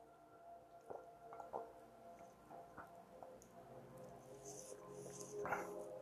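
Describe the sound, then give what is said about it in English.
Someone takes a swig of water: a handful of wet gulps and swallowing clicks spaced irregularly over a few seconds, with no talking. “I had to take another swig of water.”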